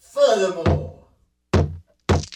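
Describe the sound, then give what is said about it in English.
Three heavy, booming thuds of someone outside kicking against a wooden side door, spaced unevenly; a man speaks briefly just before the first blow. “Somebody outside is kicking against the side door!”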